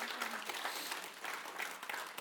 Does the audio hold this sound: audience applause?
yes